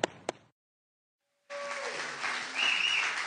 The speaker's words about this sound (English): So I want you to give him a warm welcome with me as he comes up to the stage this morning. Pastor Ryan Michaels. Let's give him a warm round of applause, church.